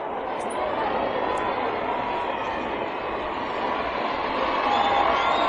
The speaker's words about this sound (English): They're cheering. Oh, they're cheering. They're cheering.